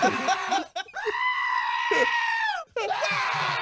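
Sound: goat bleating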